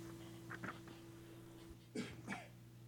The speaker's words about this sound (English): Sorry, had a cough and drink at the same time.